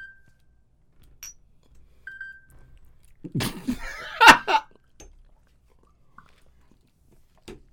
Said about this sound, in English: I heard you gulp just now.